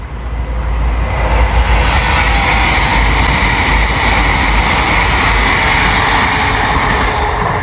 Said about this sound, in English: And just at that moment, a train goes by, which seems pretty fitting.